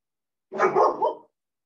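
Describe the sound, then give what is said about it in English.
A dog barks in a short, loud burst of two or three quick woofs running together, with silence before and after and no one talking. “So sorry, your dog interruption”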